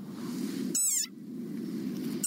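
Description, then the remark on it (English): An angry desert rain frog lets out a sharp, high-pitched squeak, its war cry, like a squeezed rubber dog toy, over a steady low rumble. A second squeak begins right at the end. “Like this desert rain frog. Squeaking viral sensation.”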